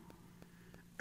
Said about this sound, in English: Sorry, this little cough, it's not a COVID cough. I got tested, by the way.